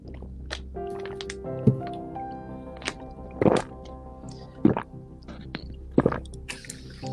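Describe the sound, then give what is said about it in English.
Several wet gulping sounds as a person with a very large Adam's apple swallows water, spaced a second or so apart, each a short squishy burst over a quiet background. “So when I drink water or any other liquid, I'll just let it speak for itself.”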